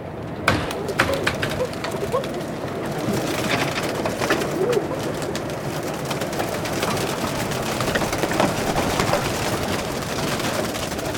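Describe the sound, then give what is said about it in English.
A large flock of pigeons coos in a steady, overlapping murmur, with sharp bursts of flapping wings as handlers on the decks of a boat open coops and shoo the birds out at civil twilight, loudest near the start, against a dense outdoor background. “But this show is at civil twilight, so it's still light out about an hour before the show begins when the pigeon handlers walk up and down the decks of the boat, opening coops, shooing the birds out.”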